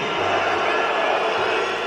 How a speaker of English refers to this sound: Arguably, the most interesting thing about that game actually happened before kickoff. And boos from the Hungarian crowd as the Irish make the anti-racism gesture of taking the knee.